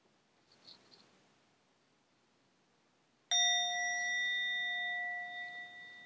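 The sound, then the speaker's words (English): A single meditation bell is struck after a few seconds of near silence to begin a meditation practice, ringing out clearly with bright sustained overtones that slowly fade and shimmer for several seconds. “I will begin this practice with a bell and complete and end the practice with two bells.”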